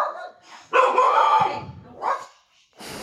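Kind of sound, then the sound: animal, dogs barking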